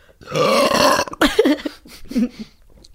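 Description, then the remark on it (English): A loud, long, rumbling burp lasting nearly a second, followed by a few shorter throaty vocal bursts. “I don't know awful, if anybody can outbase that burp.”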